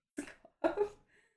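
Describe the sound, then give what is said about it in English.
A dog coughs twice: two short, rough, harsh bursts, the second louder and slightly longer, followed by a faint wheezy trail. “I just never heard a dog cough like that.”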